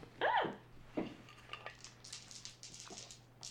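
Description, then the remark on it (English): Four dice clatter and tumble across a hard tabletop, a loud rattling burst at first, then a scatter of lighter, quick clicks as they settle, over a faint steady hum. “Is there like a dice ASMR?”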